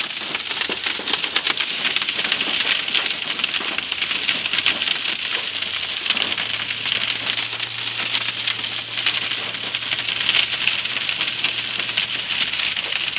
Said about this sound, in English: This is awesome. I live in Arizona, so rain is awesome. This is the beginning of monsoons. Wow. That hail sounds like fucking snowballs. This is cool.